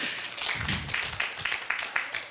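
A crowd claps hands together in a steady burst of applause, many overlapping claps forming a continuous patter that holds at moderate loudness for a couple of seconds.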